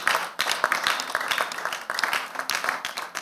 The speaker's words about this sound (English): Give him a clap of hand.